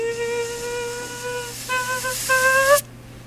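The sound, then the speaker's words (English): A voice mimics a whining mosquito: a thin, steady nasal buzz in three stretches, the last rising in pitch and dissolving into a hissing lisp before cutting off sharply. “A mosquito with a lisp.”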